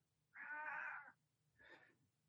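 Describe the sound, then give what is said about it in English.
A pet cat named Ziggy meows twice: first a long, loud, drawn-out cry, then a shorter, softer one after a brief pause. No one speaks. “Ziggy's the talker.”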